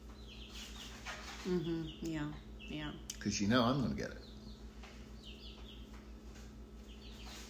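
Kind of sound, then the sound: animal, chickens clucking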